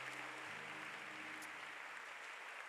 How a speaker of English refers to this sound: Clap your hands again for Jesus. Yeah.